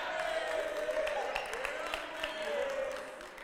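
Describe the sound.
An audience cheers and claps together, a steady wash of rapid applause with whoops and shouting voices rising over it, holding loud for a few seconds before tapering slightly at the end.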